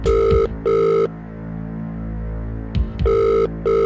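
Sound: telephone ringing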